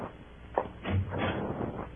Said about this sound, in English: Open the door for him